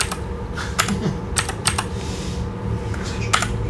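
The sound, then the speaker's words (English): Clacky computer keyboard typing, a quick irregular run of sharp keystrokes in short bursts with brief pauses, over a steady low background hum and no voices. “This keyboard's loud.”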